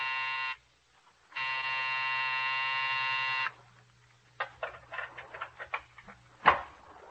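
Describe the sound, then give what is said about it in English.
The harsh, droning night buzzer at the door of a doctor's office building sounds twice, a short burst and then a longer steady one, followed by scattered clattering and a sharp knock, with no talking. “It sat square and solid on its haunches, and when you pressed the night buzzer, it growled at you.”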